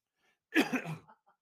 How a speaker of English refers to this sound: I'm coughing up a lung. I'm trying to freaking do the show. It's very, very painful. It's so aggravating.